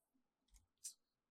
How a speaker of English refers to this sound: Okay. And then... Now you roll effect dice. Okay. And that is the security plus weapon damage.